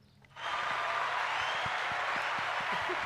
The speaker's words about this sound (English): So, yeah, big news out of 2023. Wolverines have their first official sponsor for the year. Do we have an applause? Oh, I think we do there